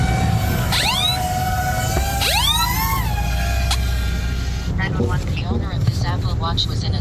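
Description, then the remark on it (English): An Apple Watch crash-detection alarm gives two loud rising electronic whoops over a steady tone and rumbling background noise, right after its wearer lands and medics run over to him, then people start talking as the alarm fades. “Listen carefully. You're going to hear his Apple Watch start barking at him.”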